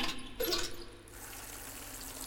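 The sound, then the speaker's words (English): A leaky kitchen faucet in an old manor house runs water, gushing strongly for about a second before settling into a steady, quieter trickling flow. No one speaks. “Leaky faucet, it seems.”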